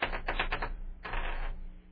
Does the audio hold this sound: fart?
no